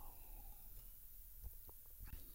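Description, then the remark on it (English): Quiet mouth noises of someone sipping water: a few soft, brief slurps and a swallow over low background hiss, with no talking. “So anyway, but right now, with it being pretty cool here, I know we're in the 70s and stuff like that, but I'm going to take a sip of this lovely water.”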